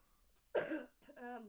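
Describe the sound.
A single sharp cough from a person with allergies bursts out after a quiet moment, followed by a short voiced throaty sound as it trails off.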